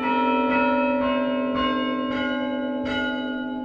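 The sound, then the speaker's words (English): The church tower chime at St. Mark's, played from a wooden console whose 9 wooden handles are each cabled to a bell in the tower, rings a slow sequence of bell notes, each strike about half a second apart over a sustained, ringing hum of overlapping tones, loud and resonant with no voices. “It's a wooden console with 9 wooden handles sticking out, each one connected by a cable to its corresponding bell up in the tower.”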